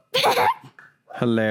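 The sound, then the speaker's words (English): A dog barks as a car passes by: a couple of rough, noisy barks, a short pause, then a louder, more tonal bark or yelp. “The car passed by and he starts barking.”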